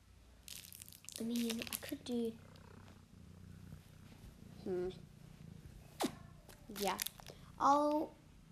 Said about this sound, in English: Her name's Minnie. She's very cute. And she's very cute around me. She likes purring on me. She's very nice.